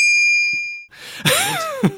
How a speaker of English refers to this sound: It's like dear old Cyril Shapps. Yeah. Cyril Shapps turns up, there should be a bell rings.